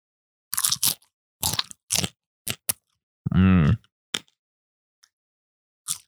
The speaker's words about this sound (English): There's a little popcorn left. It's mainly the little tiny bits. Like, there's not that many prime kernels. This is like maybe choice grade popcorn. Just the last remnants, but I'll give you ASMR a little popcorn chew right here.